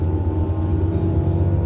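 A steady, loud engine rumble of an Omnitrans bus drones throughout, a low humming vibration with a constant tone, like sitting inside a moving vehicle. No one speaks.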